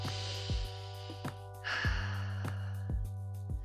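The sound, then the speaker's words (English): A long, deep breath drawn in through a broken nose with a rough, nasal hiss, then released, over a steady background music bed with regular soft beats. “And I just want, for all you people out there who think that I'm doing just fine and my life is totally together, blah, blah, blah, please take a deep breath with me right now.”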